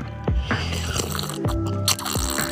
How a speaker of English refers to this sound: This is quality water slurping.